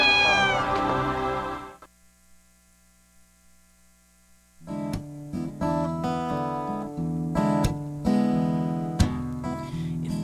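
A single drawn-out cat meow sounds at the start, followed by a few seconds of near-silence with a low hum, then steady music comes in and continues.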